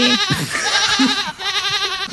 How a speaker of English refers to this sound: So that's my whole family. That was some goats. Yeah. That sounded like goats. I have a family. That sounded goats. Like our goats. That sounded like our goats.